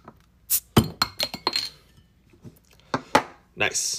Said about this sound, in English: I have an old favorite of mine, a Spotted Cow from New Glarus Brewing Company. So we're going to go ahead and open this bottle.